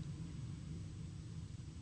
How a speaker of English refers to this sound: Can you hear that? It's the wind. That's a train going past my house. Listen.